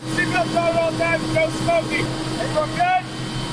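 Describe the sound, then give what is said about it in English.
A helicopter's steady, loud engine and rotor drone heard from inside the cabin, with a continuous low rumble and a faint whine, while muffled voices talk over it. It is an Embassy Air shuttle on a five-minute flight between the U.S. Embassy and the airport in Kabul, Afghanistan, making its 10th trip of the day. “The chopper we boarded was making its 10th trip of the day.”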